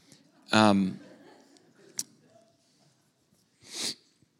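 A baby girl sneezes, a small, high-pitched sneeze, followed a few seconds later by a second, softer sneeze, with a brief click between them and quiet background noise.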